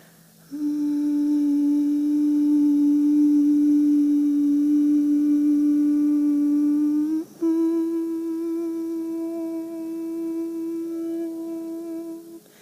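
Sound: sustained vocal humming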